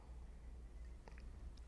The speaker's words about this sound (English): Excuse me, taking another sip.